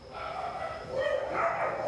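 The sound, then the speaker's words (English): Dogs bark and yip outdoors in a steady, overlapping stretch, the noise building slightly toward the end with no clear pauses between the calls. “Oh, come on, dogs.”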